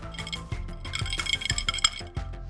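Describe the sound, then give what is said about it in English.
Several glasses clink together in a toast, a quick flurry of bright, ringing taps, fairly loud, with a soft low thumping pulse steadily underneath. “Cheers. Cheers.”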